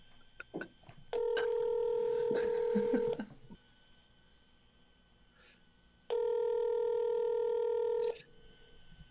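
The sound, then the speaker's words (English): Telephone line tones from dialing a phone: a couple of quick keypad clicks, then two long, steady electronic beeps of about two seconds each, separated by a pause, clear and fairly loud with no talking. “Try another one.”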